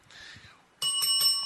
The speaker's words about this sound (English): Why does he get the bell?